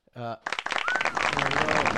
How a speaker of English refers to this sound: Just people talking. Just airport sounds. Oh, I think I have that, actually. There we go. Crowd noise? Yeah, I'm looking for regular crowd.